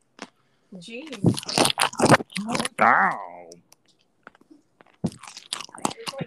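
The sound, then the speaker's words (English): Loud crunching and chewing of pork rinds, a rapid series of crisp bites, interrupted by a man's short exclamations before the crunching resumes. “And the pork rinds.”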